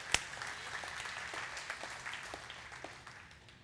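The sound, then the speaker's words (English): A church audience breaks into steady applause for Jesus, many hands clapping together in a dense, continuous patter, opening with one sharp loud clap and tapering slightly toward the end. “You can clap for that. Let's clap for Jesus.”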